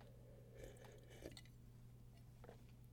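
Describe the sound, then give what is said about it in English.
Quiet slurping sips of coffee, three or four short wet mouth sounds spaced across a few seconds over a steady low background hum, with no talking. “Take a sip of this coffee real quick.”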